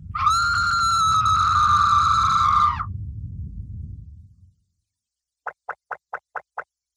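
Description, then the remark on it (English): A loud, sustained, piercing scream lasts about three seconds over a deep rumbling that fades soon after, followed by a brief silence and then six quick, evenly spaced clicks. “The entire room begins to shake as a ghastly scream fills the room.”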